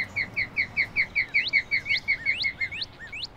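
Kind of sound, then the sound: bird, birds singing outdoors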